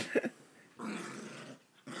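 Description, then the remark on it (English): A dog growls playfully while playing: a couple of quick, yippy grunts, then a longer, rough rumbling growl that breaks off briefly and starts again. No one speaks. “Dude, that dog's gonna bite your fucking hand, man.”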